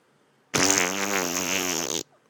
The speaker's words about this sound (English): Really? Yeah, I fart.